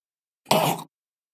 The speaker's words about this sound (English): he is gagging on his own shit. And I thought he was going to throw up.